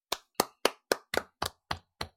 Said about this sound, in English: Yeah, you better clap.